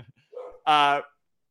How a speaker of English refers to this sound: Sorry, my dog is losing it right now. I'm sure you can hear him. I think the mailman showed up or something.